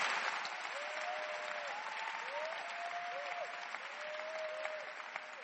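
Thin, scattered applause from an audience, a steady patter of hand claps with little force, continuing for several seconds without cheers or voices.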